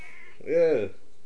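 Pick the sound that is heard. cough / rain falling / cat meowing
cat meowing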